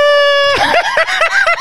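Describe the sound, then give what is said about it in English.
A loud, squeaky fart: a steady high-pitched tone for about half a second, then breaking into a wobbling, sputtering squeal that pulses up and down until it ends. “are we ending on a fart? I hope the mic didn't pick it up.”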